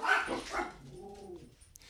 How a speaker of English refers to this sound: Sorry, if you can't tell, I own a pack of rabid dogs. Your little helpers. One of them is currently laying on my foot.